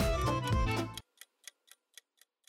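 A loud, dense musical burst cuts off abruptly, followed by a timer ticking: six crisp, evenly spaced clicks about a quarter-second apart, softer and bright, with silence between them.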